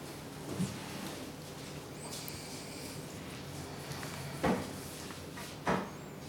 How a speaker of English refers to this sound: That's probably going to be a chair that cranks.